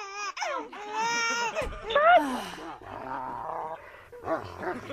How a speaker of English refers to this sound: I hear a dog.